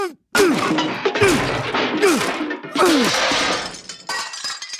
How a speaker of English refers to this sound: I think we've heard about enough. I'm gonna smash this PCD with my bureaucrat hammer.